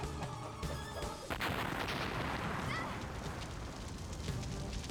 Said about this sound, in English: Hey, it's this tape player. All right, I think it's about to blow. Get it out of here fast.